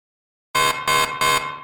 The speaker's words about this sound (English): That night, the scientist was awoken by the shrill beeping of the low oxygen alarm on the wall of his shared living quarters.